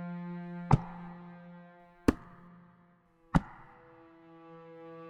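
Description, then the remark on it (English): Three sharp knocks, given as a spirit's reply during a seance, land about a second and a half apart, each crisp and distinct, over a steady low humming drone that fills the background. No one speaks. “The spirit replied by knocking three times.”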